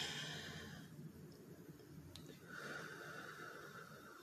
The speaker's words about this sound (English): You breathe in really deep and you let it out really slow and you do it multiple times. And what it does is that it brings you back to the present.